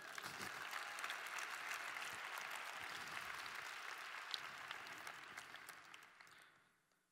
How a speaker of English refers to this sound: Let's clap it up for her.